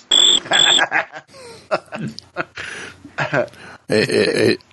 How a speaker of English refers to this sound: This is what it sounds like when a squirrel chirps.